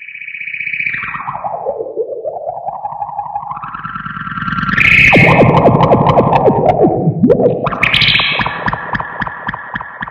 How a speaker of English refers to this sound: That's pretty much it, but that's a reverb pedal.